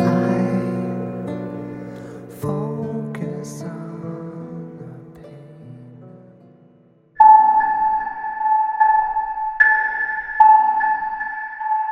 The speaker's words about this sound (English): These chimes that you're hearing are a leitmotif that I use. They represent the character of Nora Evers.